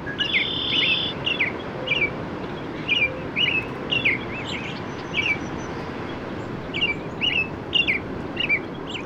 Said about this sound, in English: Mark Seth Lender made this recording at Hammonasset Beach State Park in Madison, Connecticut. There's a robin and a cardinal and then a red-winged blackbird.